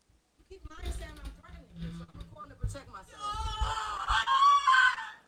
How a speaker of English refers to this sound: Yeah, look at how uncomfortable you are with the shrieking. It is really like, I mean, if she is has her full mental capacity and she's shrieking like that, it's a complete overreaction to what's going on.